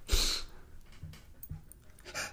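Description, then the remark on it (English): A puppy snorts and pants: a sharp breathy snort at the start, a few soft huffs and little grunts, then another breathy burst at the end. No one speaks. “Puppy agrees.”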